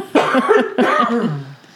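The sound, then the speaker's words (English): Two harsh coughs in quick succession, each a loud raspy burst with a slightly voiced, throaty tail, with no talking around them. “It's just the time of year. The crazy it is. Weather and all kinds of sniffles and coughs.”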